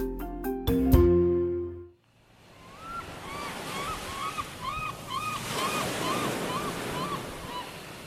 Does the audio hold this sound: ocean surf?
yes